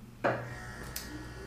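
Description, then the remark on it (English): A refrigerator gives a low, steady electrical hum throughout, with a sudden clunk near the start and a brief soft hiss shortly after. No one speaks. “That's the refrigerator.”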